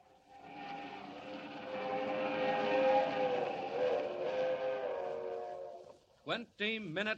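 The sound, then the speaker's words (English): A West Coast Railroad streamliner train roars up the Rockies through the dark at 80 miles an hour, a loud sustained rumble with a whining tonal edge that swells and then drops away, after which a voice starts speaking. “Roaring up the Rockies to the crossing at San Joaquin, the crack streamliner of the West Coast Railroad rushes through the dark at 80 miles an hour, destined for a watery grave at the bottom of Schooner Canyon Lake.”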